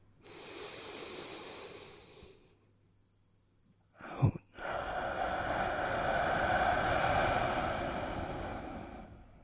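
A long, airy inhale fades into a brief pause, then a short catch of breath gives way to a slow, steady exhale that lasts several seconds, fairly loud, with no talking. Deep breaths in and out, done as a breathing exercise.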